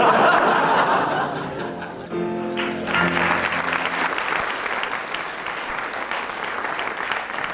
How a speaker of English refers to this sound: Well, judging by the audience applause, Willie gets 15 for that and doesn't really need to do another one.